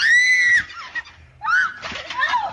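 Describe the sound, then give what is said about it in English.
A woman lets out loud, piercing, high-pitched screams while falling, in a couple of sustained bursts with a brief pause between them, with no talking. “She screamed, like, on the way down.”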